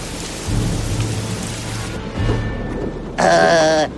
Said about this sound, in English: My ears have never heard such crashing before! The storm crashed and shook even the hefty mountain and awoke the shepherd.